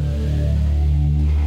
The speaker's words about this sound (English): That's all I wanted to do. That's all I wanted to do was one singular air horn. That's all I was trying to get at while I was unlocking my phone.